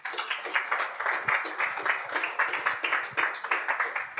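A crowd applauds steadily, many hands clapping in a dense, continuous patter that holds at a fairly even level throughout, with no voices standing out.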